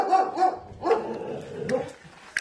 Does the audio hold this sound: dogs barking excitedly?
yes